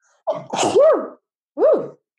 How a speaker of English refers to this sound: I'm going to sneeze. Sorry.